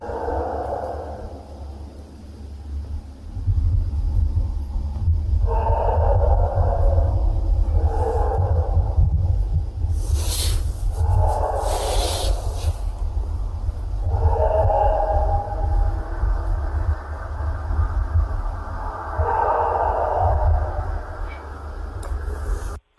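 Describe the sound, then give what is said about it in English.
A recorded howl attributed to Bigfoot, about 20 seconds long: a series of wavering, mid-pitched howls, about six drawn-out calls, rising and falling over a constant heavy low rumble, with a couple of brief hissing bursts midway. “I'm going to maybe play the audio of the howl, if you're all right with that.”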